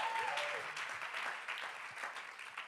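A small group applauds with dense, steady hand clapping for a few seconds, with a brief whoop near the start, the clapping fading slightly before picking back up.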